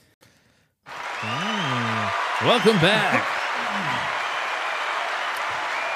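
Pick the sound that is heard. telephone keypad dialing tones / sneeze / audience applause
audience applause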